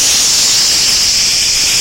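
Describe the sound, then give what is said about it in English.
A voice mimics the hiss of bug spray, one loud, steady, breathy 'psssh' held for nearly two seconds, with no words spoken. “Some of you, God is trying to pour out blessings on you, but you like bug spray.”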